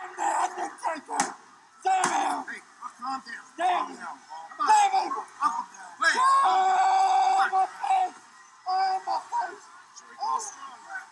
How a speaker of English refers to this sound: they show a clip in the middle of the main event of Paul Bearer being taken out in an ambulance, and he's screaming